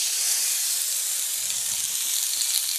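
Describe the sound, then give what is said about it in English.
A marbled prime piece of meat sizzles steadily in a giant oiled cast iron skillet, a dense crackling hiss that stays loud and constant throughout with no voices. “That sizzle is incredible. I hope everyone can hear the sizzle.”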